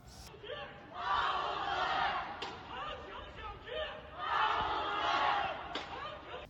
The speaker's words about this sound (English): This last clip was from protests from Shanghai's Kangting district.